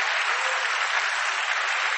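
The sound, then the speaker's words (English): An audience claps together in a dense, steady wash of applause that holds at an even, fairly loud level for the full two seconds, with no voices standing out. “Clap for God.”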